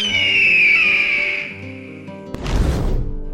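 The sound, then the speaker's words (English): An eagle sound effect: a shrill, high screech that slowly slides downward and fades, followed by a brief, heavy rush of flapping wings as the eagle lands. No one speaks. “Everyone is turning to look as a majestic eagle lands in front of all of us with a girl safely nestled in its talons.”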